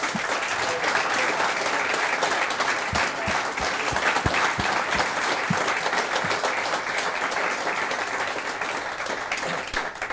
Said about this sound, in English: First of all, could I just say, how good were these guys, by the way? Give them a clap.